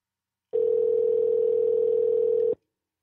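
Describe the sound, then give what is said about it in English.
A single two-second burst of a steady electronic ringback tone from a phone line, clear and fairly loud, starting and stopping abruptly with silence on either side and no voices. “Oh my god, you better answer.”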